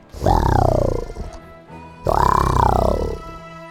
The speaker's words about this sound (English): a snarl came on his face as he echoed the roar with his own.